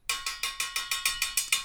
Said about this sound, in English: This is my buzzer sound.